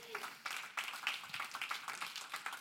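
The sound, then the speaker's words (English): A crowd applauds steadily throughout, many hands clapping at once in a dense, irregular patter that sounds soft, with no one talking over it. “Come on, it's okay to clap for that.”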